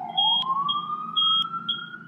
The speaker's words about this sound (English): What did you do? it's the smoke alarm. Oh, interesting. Yeah, my girlfriend's cooking.